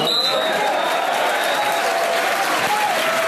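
An AFC Wimbledon football crowd roars and applauds steadily as the scoreboard reads Wimbledon 2, Burton Albion 0 at half time, a loud, dense wash of cheering and clapping that holds for the whole few seconds, with a few whistles rising above it.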